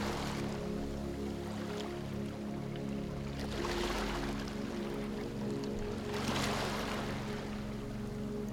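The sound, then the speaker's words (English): Ocean waves wash in with two broad, hissing surges that swell and recede, layered over a steady low droning hum. No one speaks. “As you listen to the waves, repeat in your mind or out loud the following affirmations.”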